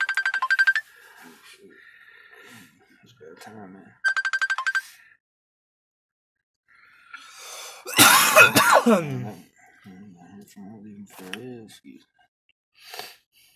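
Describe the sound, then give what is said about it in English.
A phone ringtone for an incoming call sounds in two short electronic bursts about four seconds apart, fairly loud, followed by murmured talk and a sharp throat-clearing cough. “Oh, got a phone call.”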